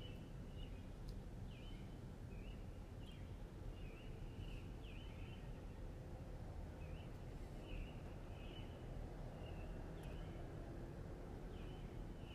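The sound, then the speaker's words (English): Birds chirp outdoors in short, repeated calls about once a second, fairly faint, over a steady rushing background noise. No one speaks. “I hope you can hear the birds.”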